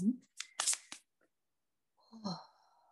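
A few quick, soft, papery bursts of oracle cards being shuffled, followed after a pause by a short murmured vocal sound.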